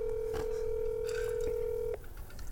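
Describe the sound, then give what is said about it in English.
A phone call being dialed to a caller during a radio call-in show: a steady, mid-pitched telephone tone hums for about two seconds, then cuts off abruptly, leaving faint background noise with a few soft clicks. “Stalker, call him.”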